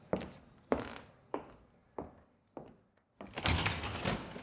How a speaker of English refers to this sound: I'll quickly open the door and check on her.